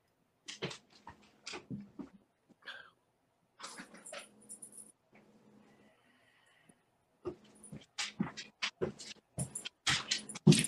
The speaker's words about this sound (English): oh my gosh, my dog, hold on 1 second. My dog is like crying.